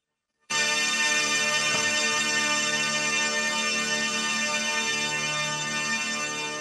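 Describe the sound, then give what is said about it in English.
The THX cinema sound effect, played over a phone call: a loud, sustained chord of many layered tones that begins abruptly and holds steady to the end, fading only slightly, with no talking. “That was the big old THX sound effect.”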